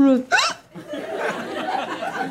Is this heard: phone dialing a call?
no